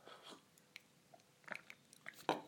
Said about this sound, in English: So just to remind me now live, I'm going to give it another sip. This is now from the AeroPress.